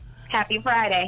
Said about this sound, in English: Man, we're going to have to put the phones on silent because y'all got this thing jumping this morning.